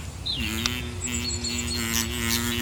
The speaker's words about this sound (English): Ah, it's a peaceful sunny day in the country. Can you hear the birds?